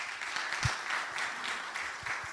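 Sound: audience applause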